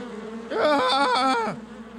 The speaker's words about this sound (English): I said swarm. Like a bunch of bees. Okay. Bees! Attack!